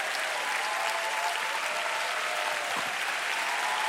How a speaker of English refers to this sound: Oh yeah, I thought you'd be standing up. I thought you'd be standing up and clapping. I said, I thought you'd be standing and clapping and shouting and shouting.